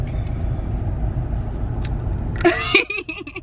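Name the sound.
car interior driving noise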